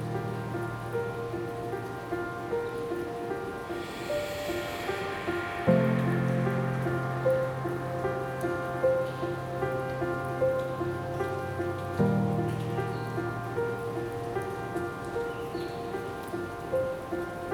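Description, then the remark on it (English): Steady rain patters continuously beneath soft, sustained musical tones, a gentle even hiss with faint droplet ticks that never lets up. “Let the crystal rain fall over your tightly coiled muscles.”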